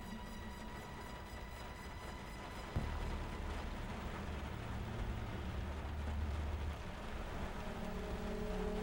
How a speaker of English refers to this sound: I hear rain.